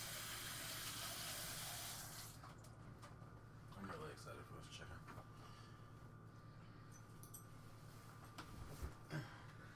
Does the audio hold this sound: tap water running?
yes